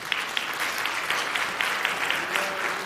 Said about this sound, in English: You could say that I'm B team, but can you guys do me a favor and give a round of applause for our worship team?